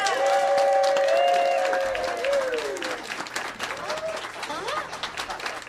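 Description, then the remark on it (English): A crowd applauds loudly, dense clapping with whoops and cheers rising over it at the start, then the clapping thins and tapers off toward the end, as the audience in the room welcomes a singer invited to the stage. “Ladies and gentlemen, please give a warm round of welcoming applause”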